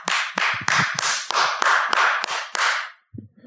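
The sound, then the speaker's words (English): One person, having put down the mic, claps into it about nine times to thank last week's guest, in a steady, even rhythm, each clap loud and sharp with a ringing tail, followed by a brief faint rustle. “I love putting down the mic to clap into the mic.”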